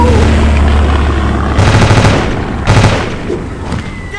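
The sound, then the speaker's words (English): Two quick bursts of rapid machine-gun fire, each about half a second, rattle over a loud, steady low engine drone, like an aircraft strafing from above. “They're going after the planet, trying to strafe them right out of the air!”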